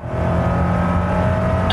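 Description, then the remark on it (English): A car engine roars on a test track as the car accelerates hard, a loud, steady drone with a humming tone running through it, like a vehicle under hard throttle. No one speaks. “If you find that your car is accelerating hard, even after you've taken your foot off the gas pedal, your first instinct is probably the right one.”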